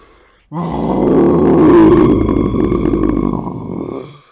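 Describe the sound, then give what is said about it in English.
A monster on a bridge bellows in one long, loud, deep roar, rough and guttural like a mix of a yell, a moo and a belch, holding steady for several seconds before cutting off. “He bellowed, a sound that was somewhere between a yell, a moo, and a really loud belch.”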